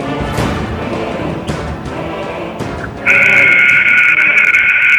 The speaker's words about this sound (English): All righty, just in case you're joining me, you just heard the buzzer. We flipped our heels three times. We put Toto in the basket, baby, and you and I have landed inside Lisbon Central School tonight.